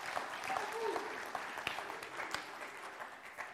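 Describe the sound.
A room full of people claps steadily, a dense, sustained wash of applause with a few louder individual claps standing out, accompanied by faint scattered voices and murmurs.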